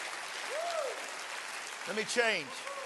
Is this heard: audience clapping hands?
yes